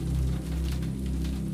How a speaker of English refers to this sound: The somnolent sounds of rain and the white noise of the dryer carry on.